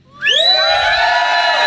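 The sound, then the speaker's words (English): A live audience of people standing outside erupts in loud cheering and shouting when asked to make noise. Many overlapping voices rise together and hold a high, sustained roar for about a second and a half. “Yeah, how many people are can out there? Can we hear around? Yeah, talk to us, guys.”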